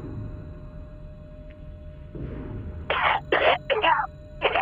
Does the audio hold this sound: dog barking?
no